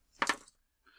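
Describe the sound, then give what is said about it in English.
Dice clatter onto a tabletop in two quick, sharp clicks, trailing into a brief rattle, then a faint settling tap a moment later. “Well, roll some dice, see if it breaks on the way out.”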